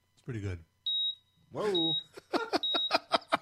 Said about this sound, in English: Am I backing up or is that my heart monitor? That was a smoke alarm. It's both. This apartment's kind of a fire trap. Sounds so lifelike.